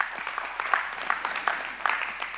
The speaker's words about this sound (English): Come on, y'all give the Lord a hand clap for that.